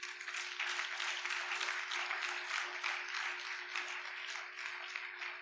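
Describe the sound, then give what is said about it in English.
An audience claps together in steady, sustained applause that lasts the whole stretch, a dense wash of many hands, with a faint low hum underneath and no talking. “I thought you were going to clap.”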